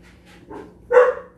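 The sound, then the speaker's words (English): A dog gives a single sharp bark near the end, preceded by a couple of softer, fainter yips. The bark is fairly loud, with no talking over it. “Shout out to the dog.”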